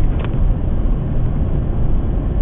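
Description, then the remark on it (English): Steady, low rumble inside a car driving in slow traffic near Fife, Washington, on the way to Portland with a load of boxes; a continuous engine and road drone at an even level with no voices and no distinct events. “Driving to Portland right now, with a bunch of boxes to hand off to a distribution team. Traffic is moving pretty slow.”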